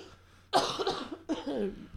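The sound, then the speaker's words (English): Two loud coughs, a harsh burst followed by a slightly softer second cough after a short pause, with no talking. “It's not spicy cough.”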